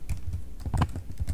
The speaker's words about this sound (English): I like the sound of the keyboard.